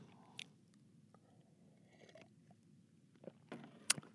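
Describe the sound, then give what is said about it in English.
Quiet sipping of hot Yorkshire Gold loose leaf tea: a soft slurp near the start, then a few short, airy slurping bursts toward the end, the last one sharpest, over a low, steady rumble. “So I'm going to take a sip of this fine, high quality Yorkshire Gold loose leaf tea.”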